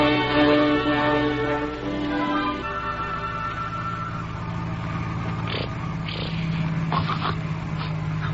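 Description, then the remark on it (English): A steady, droning car engine hums throughout as the car is being driven, and in the second half a baby's snores come in a few short, breathy rasps over the motor. “Is that the kid snoring?”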